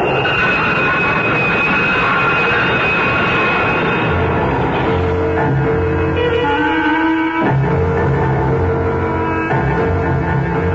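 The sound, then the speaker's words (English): A loud, steady roar of a train rushing in along a station platform, with metallic whining tones sliding over the rumble and a brief sharp break before the din continues. No voices. “Caught off balance, Deke's foot slipped off the edge of the platform, and Deke started to fall helplessly in the path of the onrushing train.”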